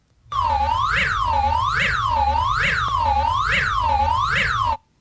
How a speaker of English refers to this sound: Here's Iceland's emergency sound.